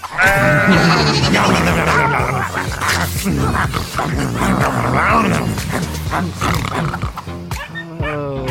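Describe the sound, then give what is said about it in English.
Goats belonging to the Van Owens bleat loudly, a steady stream of wavering, overlapping cries that keeps going without pause for several seconds. “I heard the Van Owens got some goats this week.”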